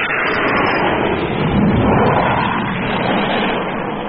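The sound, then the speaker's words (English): A loud, continuous roar of an aircraft passing overhead, a dense rushing drone that swells slightly midway and holds steady throughout, with no voices. “That was Frank going over. And what a racket he kicked up and all.”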